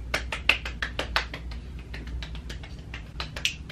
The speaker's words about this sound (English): Okay, that is a round of applause for every single last woman, lady, girl, whomever you want to consider yourself as, for anyone who slid in my DMs to acknowledge whether they seen the traits within themselves